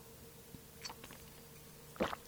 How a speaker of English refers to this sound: I'm going to take a sip of my coffee because your girl needs a drink.